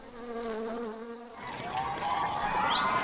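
A dense swarm of bees buzzes steadily and loudly, a droning hum that starts with a clear low tone and then spreads into a thicker, rougher mass of buzzing.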